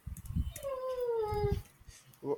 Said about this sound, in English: Whose dog is that?